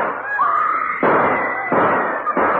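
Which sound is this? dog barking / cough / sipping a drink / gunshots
gunshots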